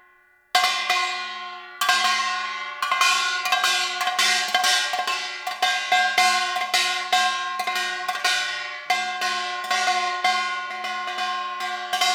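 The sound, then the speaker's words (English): A kengari, a small handheld gong about 20 cm in diameter held in the left hand, struck with a stick in the right hand in a fast, driving rhythm, bright metallic clangs ringing loud one after another for several seconds, with no voices. “And there are another instrument called kengari, because it sounds like keng keng keng keng.”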